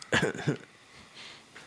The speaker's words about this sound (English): And where a guy won by having his buddy audience cough. Have you seen it? Let's just play the cough.